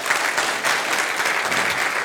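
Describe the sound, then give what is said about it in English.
An audience at a church service applauds steadily to welcome the online live-stream audience, a dense, even wash of many hands clapping at once, sustained and fairly loud throughout with no voices standing out. “Can we make our online audience welcome this morning as well?”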